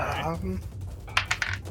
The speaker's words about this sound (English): And my dice shouldn't have fallen on the floor, so I'm going to re-roll that real quick.